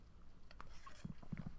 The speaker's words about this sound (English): One, I have my marble Wawa cup of iced coffee. I kind of drank most of it. I'm going to take a sip now.